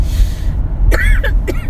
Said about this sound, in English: Now it's my turn to cough.